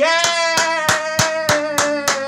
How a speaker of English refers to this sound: I've never had such an enthusiastic applause from one person.